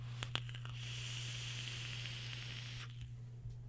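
A steady sizzling hiss of a vape coil firing on a Nitrous RDA dripper atop a Snowcap squonk mod with a single 21700 battery, with sharp little crackles and pops scattered through it, over a constant low hum, fading slightly near the end.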